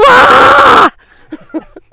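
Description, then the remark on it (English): A voice lets out a loud, raw guttural scream lasting just under a second, imitating a primal cry, then it cuts off abruptly, leaving faint quiet vocal sounds and brief murmurs. “And we were giving it our all towards the end, and there was this primordial guttural scream.”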